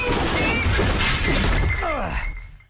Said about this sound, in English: That's a sound effect there of a man falling from a ceiling.